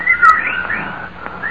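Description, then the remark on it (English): Clear, whistling bird calls rise and fall in smooth sweeping tones, with a couple of sharper chirps near the start. They carry on steadily, with no voices. “Yes, the birds changed when his breathing changed.”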